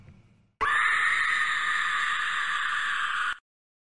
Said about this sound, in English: I do that just so I can do the Porg scream. I hope you guys understand that, because I love the Porg scream. It's growing on me quite a bit. The kids loved it at the beginning, and it was kind of annoying,